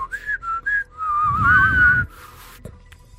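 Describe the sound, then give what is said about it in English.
A person whistles through the nose, starting with three short, high notes and then a longer wavering tone over a breathy rush of air, fairly loud, with no talking. “Yes, yeah, I can whistle both ways.”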